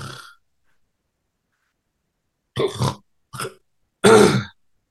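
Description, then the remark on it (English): A voice imitates snoring and choking during sleep, the sleeper jerking up to breathe again: a brief rasp, then after a pause three rough, throaty bursts, a choked snort and a short gasp ending in a louder, gravelly grunt. “And that is you choking, and you're actually jerking yourself up to like breathe again.”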